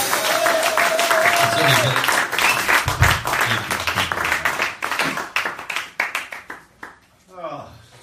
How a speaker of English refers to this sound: Okay. Got that little cheering section. Yeah, what? That personal cheering section.